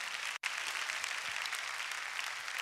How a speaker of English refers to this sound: Clap your hands and praise God.